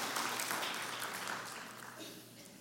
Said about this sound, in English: And we're applauding God because he is worthy of our applause.